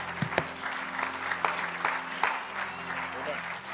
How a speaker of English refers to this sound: If you're ready to receive that word, clap your hands unto the Lord one more time.